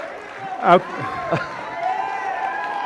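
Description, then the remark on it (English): A church audience, standing, applauds and cheers a man's 20 years of shepherding the church, a steady wash of clapping and crowd noise with a couple of loud, ringing shouts rising above it early on. “So y'all can give it up for him.”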